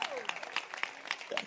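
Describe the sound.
An audience claps their hands in a fairly steady rhythm, sharp bursts of applause repeating every fraction of a second, with a faint voice and crowd murmur underneath.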